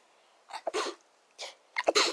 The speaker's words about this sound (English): Hang on, I need to sneeze.